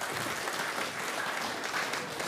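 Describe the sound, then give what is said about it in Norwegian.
Steady audience applause for a family about to sing, a dense wash of many hands clapping at an even, fairly loud level throughout, with no voices standing out. “Vi skal gi dem en skikkelig klapp, da.”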